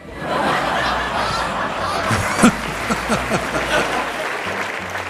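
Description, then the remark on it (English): A crowd bursts into steady, dense applause with scattered cheers and some laughter mixed in, sustained at a loud level for several seconds. “This is like prisoners cheering the warden.”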